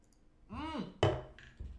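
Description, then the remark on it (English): A single loud, sharp hand clap cuts in right after a brief voiced sound from someone, followed a moment later by a softer, duller knock. “That was probably a loud clap.”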